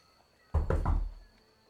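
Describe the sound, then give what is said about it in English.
Three quick, solid knocks on the closed wooden door of a small room off a stairway, fairly loud, in a steady rhythm, with only a faint background hum before and after. “I'll just rap on the door.”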